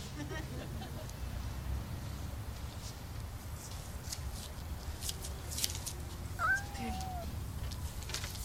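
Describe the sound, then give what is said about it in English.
A single short cat meow rises out of a steady, murmuring background noise, lasting under a second. “Look, I am sorry that you feel guilty or whatever about spending time with your new mom, but this is not your old mom. This is a cat, okay?”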